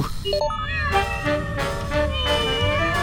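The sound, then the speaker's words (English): Kittens meow in a steady chorus of high, wavering cries that rise and overlap with almost no pause. The mewing is fairly loud, with no one talking. “Amusing kitten 27.wav not found! Kittens?”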